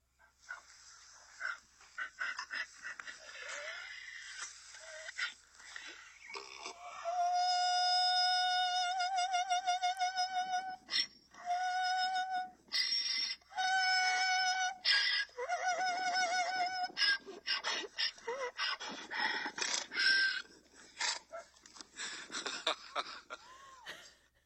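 animal, donkey braying

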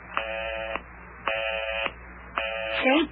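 signal or alarm, telephone busy signal

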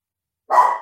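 animal, dogs barking

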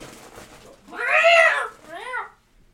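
animal, cat meowing and yowling

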